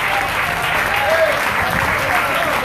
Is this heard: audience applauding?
yes